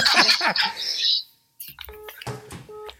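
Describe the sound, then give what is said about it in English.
A telephone handset is set down with a rustling clatter as a call is hung up, then a brief pause, sharp clicks and a few short electronic beeps from the phone. “I'm hanging up the phone.”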